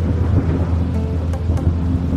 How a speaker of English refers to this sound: As the soldiers arrived, there was a huge storm brewing at the same time. The clouds were dark and swirling, and the waves were wild and crashing. The little island of Otochich Sveti Ivan was caught in a tempest. A tempest is a really big storm.